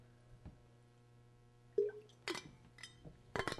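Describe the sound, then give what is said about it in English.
A water bottle is tapped and handled, giving a few sharp clinks and knocks with a brief resonant ring, spread irregularly over a few seconds against a low steady hum. “This water bottle's got a lot of good sounds.”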